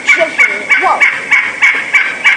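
Wild turkey hens among hunting decoys give assembly yelps to gather the flock: a steady series of short, raspy yelps, about eight evenly spaced notes, with softer clucks and purrs mixed in between.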